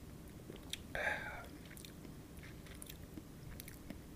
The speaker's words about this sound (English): Now it's time to see if that balance of aromas translates to the palate with a nice sip of this Evan Williams White Label Bottled and Bond whiskey. Okay, let's take a sip of this bad boy.